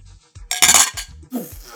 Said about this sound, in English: That just sounded like a collision. And we drink. These glasses sound cheap. Sound like we clicking mason jars. This is Dollar General's finest.